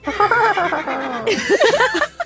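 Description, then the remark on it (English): A person does a vocal impression of the neigh of Cordelia the horse, a loud, warbling whinny lasting about two seconds that rises and falls in quick trills, ending with a giggly, laugh-like flutter. “In the distance, Cass, you hear the familiar, yet still new, neigh of Cordelia the horse.”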